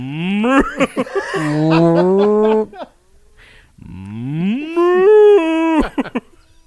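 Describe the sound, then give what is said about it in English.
A voice imitates a cow with two long, drawn-out moos separated by a short pause, the second rising in pitch. Both are loud, with no other sounds around them. “He's got a cow. He's mooing.”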